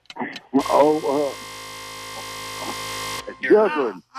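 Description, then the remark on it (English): A loud, harsh game show time-up buzzer blares steadily for over three seconds at the end of a juggling contest, its droning tone running under excited voices that talk over it and continue briefly after it cuts off. “If you would have got juggled there at the buzzer, it would have tied.”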